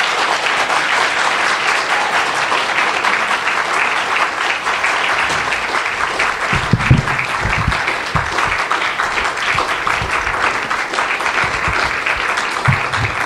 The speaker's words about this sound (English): And for that, can you guys give a round of applause for …?